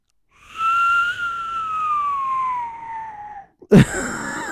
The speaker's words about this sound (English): Ah, the old nose whistle.